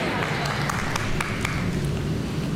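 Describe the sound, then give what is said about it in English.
A golf clap: light, polite applause with a handful of soft, scattered claps over a steady murmuring crowd hum, at a moderate, even level throughout. “That's a golf clap at its best right there.”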